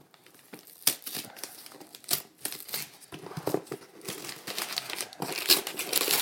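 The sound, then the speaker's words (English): Steady crinkling and rustling of paper packaging as a box inside a box is unwrapped, revealing Ninja Turtle coasters, with sharp crackles and brief tearing bursts scattered throughout, no voices. “I got very curious about this box in a box. Let's see what we got here.”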